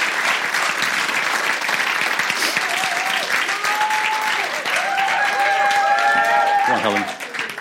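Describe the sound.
Sustained audience applause at Arena Church, a dense wash of many hands clapping at steady loudness for several seconds, with a few voices whooping or calling out over it near the end.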